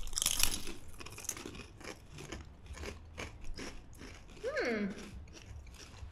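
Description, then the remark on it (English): Crunching of crispy vegan snack chips, with a rapid series of crackly bites and chews. A brief voiced murmur rises and falls near the end. “Crispy crunchy is just like, you can't be mad at that.”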